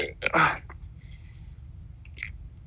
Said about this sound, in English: Oh my God. Oh my God, now I have the hiccups.